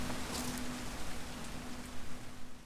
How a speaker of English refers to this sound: And so they traveled south, following Harl's lead, with the cold rain hammering down and their hearts, oddly, lifted up with feelings of joy and gratitude.